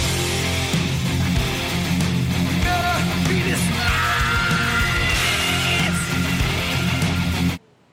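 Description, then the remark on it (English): A singer lets out a sustained, raw scream over a loud, dense live band mix with heavy drums and guitars, cutting off abruptly near the end. “What a scream.”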